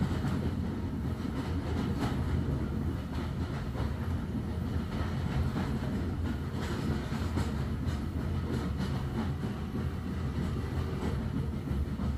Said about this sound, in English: As the train moves past the end of platform 9 3/4, the sound changes. No echo of the steel wheels on the track.